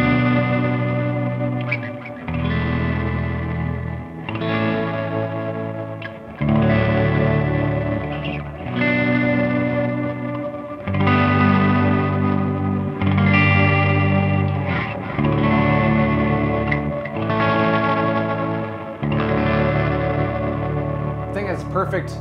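Electric guitar chords ring through a guitar amplifier with a fizzy, slightly distorted edge that comes mostly from the amp, soaked in chorus and reverb; about eight sustained chords change every couple of seconds, steady and fairly loud.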